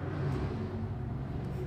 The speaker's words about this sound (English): Just a loud truck passing by. You pay no attention.